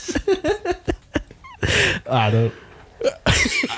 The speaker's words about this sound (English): Oh, well, I'm having a sneezing fit. I'm having a sneeze.